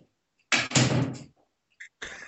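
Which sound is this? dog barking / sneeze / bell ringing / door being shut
door being shut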